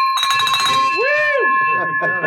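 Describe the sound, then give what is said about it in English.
A bright bell, rung in celebration of a sale, rings out with a sustained, shimmering tone that hangs in the air, while voices whoop and cheer loudly over it. “Ow, ring the bell.”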